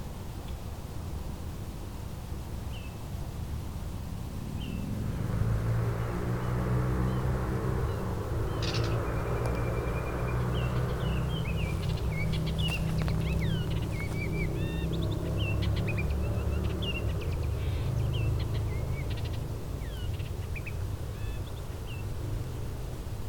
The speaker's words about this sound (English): Baltimore Oriole doing a lot of vocalization.